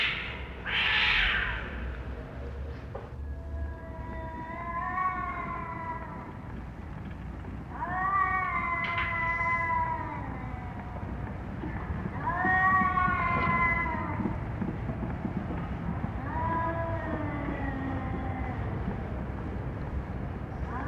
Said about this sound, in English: And late that night, about 10:30, cats in the backyard.